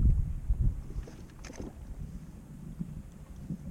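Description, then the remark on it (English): Steady wind buffets the microphone over open water around a kayak where a man is fishing, with low rumbling gusts and a brief splashing knock against the kayak partway through; no one speaks. “He's in a kayak rowing, and you see this tiger shark just engulf half the side of his boat.”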